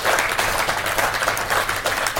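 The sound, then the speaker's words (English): Sustained applause from an audience at a Fringe meeting, a dense crackle of many hands clapping steadily and loudly throughout, with no voices rising above it. “There's been more applause in this Fringe meeting than any other previous meeting I've ever had.”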